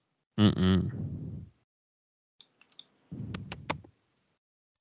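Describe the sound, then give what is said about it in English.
A short vocal sound, then several sharp computer mouse clicks in loose, irregular bursts, some crisp and isolated, others clustered over a low murmur. “And you were engaged for about 5 seconds, and now you're clicking around again.”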